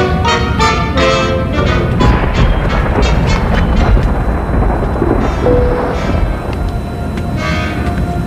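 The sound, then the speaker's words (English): A thunderstorm roars with loud, deep rumbling thunder that rolls on without a break, a dense, heavy wash of storm noise filling the whole stretch. “Storm.”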